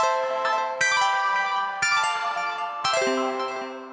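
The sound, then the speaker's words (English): A bright, ringing chime sounds three times, each strike about a second apart, its shimmering tones lingering and fading before the next. No one speaks. “Will become clear after the chime.”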